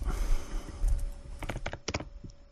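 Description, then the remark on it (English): Fairly quiet computer keyboard typing: a burst of quick, irregular key clicks over a low background rumble, with no voices. “He's on his computer.”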